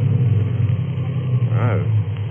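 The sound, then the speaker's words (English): A car engine, choked by its driver while driving on a road, rumbles and sputters, a loud, low, continuous chugging, with a brief wavering voice-like sound rising over it partway through. “So I choked the car.”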